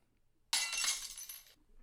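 Glass breaks with a sudden loud crash, followed by about a second of bright, tinkling shards scattering before it cuts off abruptly into quiet.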